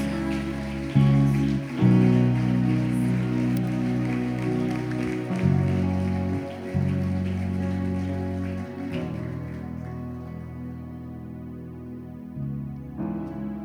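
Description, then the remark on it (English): A crowd claps for the Lord to call on God's presence, in a dense, continuous patter over sustained musical tones, the clapping thinning out briefly toward the end before picking up again. “Come on, clap louder.”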